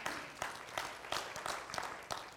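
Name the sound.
audience clapping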